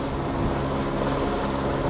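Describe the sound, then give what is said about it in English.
Several helicopters fly around overhead with a steady, continuous roar of engine and rotor noise, holding an even loudness throughout with no voices. “Got helicopters flying all around here.”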